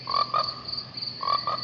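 Frogs croak in two quick pairs of short, buzzy calls separated by a brief pause, over a steady high-pitched chorus of night insects humming continuously in the background. No one speaks.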